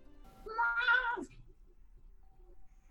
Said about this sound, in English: What was that? It was me yawning, sorry. Oh, okay. It sounded like a cat.